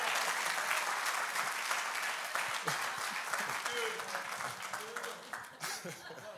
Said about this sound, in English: Clap your hands for obedience.